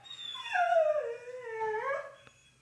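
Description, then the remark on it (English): A dog lets out a single drawn-out howl that slides down in pitch and then rises again into a whiny, whimpering tone, close and clear with no talking. “This episode was recorded at his house, and their sweet dog named Gray is prominent at the very beginning of the episode, and I didn't feel like cutting it out because I like dogs.”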